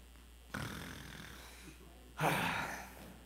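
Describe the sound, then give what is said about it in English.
A man's voice mimics the apostle Peter snoring while Jesus prays: two drawn-out, raspy breaths, the second louder and harsher, with no other sounds around them. “He's snoring, he's sleeping while Jesus is praying.”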